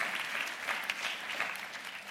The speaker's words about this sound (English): If you would give him a round of applause and take a seat. Thank you.